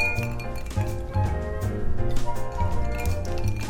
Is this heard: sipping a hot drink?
no